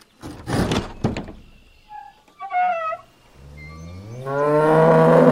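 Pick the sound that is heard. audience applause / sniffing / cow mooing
cow mooing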